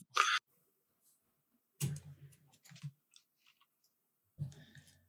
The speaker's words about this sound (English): We're hearing your typing.